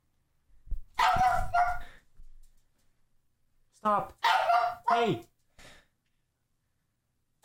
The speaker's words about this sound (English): Stop barking at me. No. She's giving me sass. Dude, whenever I come home from work, this is what I get for like an hour. Her just like barking at me, giving me shit.